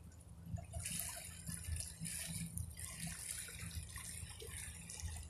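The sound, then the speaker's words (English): Steady running water pours continuously, a broad hissing splash like a tap or stream, with a low rumble underneath and no voices. “listen to that water”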